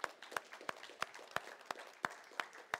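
Applause from an audience for girls who came up on stage to read, with a steady run of sharp, evenly spaced claps standing out over a softer, continuous patter of clapping.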